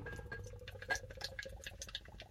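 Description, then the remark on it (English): Lager, taken out of the fridge earlier, pours from a can into a glass in a steady stream, a soft gurgling splash with faint fizzy bubbling running for a couple of seconds, no voices. “So let's get this poured.”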